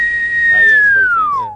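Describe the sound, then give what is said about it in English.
A single sustained whistle tone that holds steady and then slides downward in pitch, fairly faint, with low murmuring voices faintly underneath. “The whistle.”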